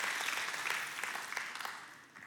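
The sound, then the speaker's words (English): An audience claps in a dense, steady patter of many hands, fairly loud and continuous before tapering off slightly toward the end, with no voices over it. “Now, do you still want to clap?”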